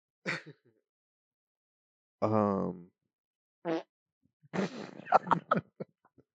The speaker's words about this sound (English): Damn, but you fart? Yeah. The first time you come out, you just fucking fart. I can say the excitement got to me. Yeah. Just a little too excited. He just rested the mic right down by his asshole because you gotta get close with these mics.